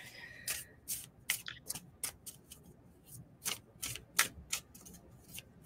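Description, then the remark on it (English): Quick, crisp papery clicks and taps repeat in a loose rhythm as a deck of cards is shuffled and tapped together before a card reading, with a faint low hum underneath and no voices. “This will take me just a second to shuffle and tap in.”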